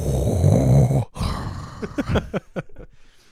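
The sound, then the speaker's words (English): A loud, heavy, rasping breath, like a masked villain breathing, followed by a brief pause and a series of short, choppy vocal bursts. “Can you stop breathing so loud? Lord Vader's getting angry over here”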